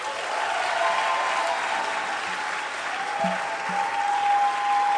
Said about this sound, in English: Yeah, clapping for my counselor like that.